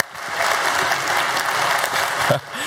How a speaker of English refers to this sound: So that being said, will you give a warm welcome and round of applause for all of our parents and the kids coming up on stage that are dedicating their kids?